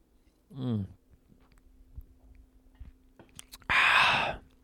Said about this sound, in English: Sorry, just taking a little sip break.